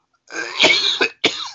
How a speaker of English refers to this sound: I'm going to say this really quick because I got this cough spell.